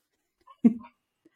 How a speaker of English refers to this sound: The dogs are joining in.